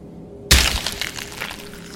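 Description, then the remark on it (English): A heavy rock is brought down a second time onto the skull of a barely living person with one sudden, loud crunch, followed by a brief crackling scatter that fades out over a low background hum. “raised the rock again for good measure and brought it down once more on the barely living remains”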